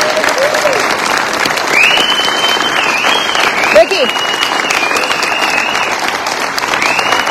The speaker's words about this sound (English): So if you could all please just give these guys a big round of applause.